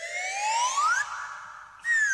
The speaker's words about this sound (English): Bond spots a partial wreck of a bridge and uses it to jump the river. They ruin this whole stunt by using a fucking slide whistle. Why are they keep ruining these stunts?